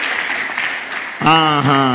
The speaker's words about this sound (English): That is a small hand clap.